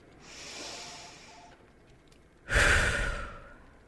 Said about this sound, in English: Just keep breathing.